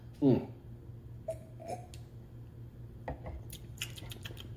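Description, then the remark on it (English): A quick sip of fresh lime sparkling water, followed by quiet slurping and scattered small clicks and pops, like fizz and mouth noises, over faint background hum. “Let's take a sip of this fresh lime.”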